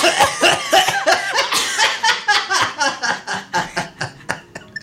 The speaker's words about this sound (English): Well, obviously, coughing sucks. Everybody, let's just end with a couple coughs. Ready?